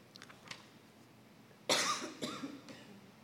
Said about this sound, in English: I think the clinic in Bordeaux would have some reasons for this cough.